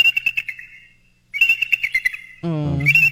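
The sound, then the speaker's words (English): Rapid, high-pitched eagle chirps chatter in two quick bursts separated by a brief pause, then a harsher, more resonant call rises at the end. No one speaks. “Here's some sweet eagle chirps.”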